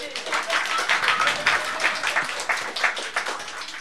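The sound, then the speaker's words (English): A show audience claps on cue after the word turtles is said, a dense, crackling wash of many hands with no pause for a few seconds, moderately loud, with faint crowd murmur mixed in. “That's the part of the show where … says turtles, and you all get to clap.”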